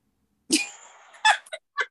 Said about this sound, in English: Bless you.